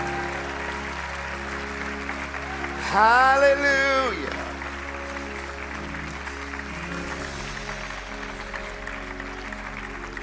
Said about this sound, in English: People, I bet if you'll keep clapping, they'll keep coming. I bet you they will.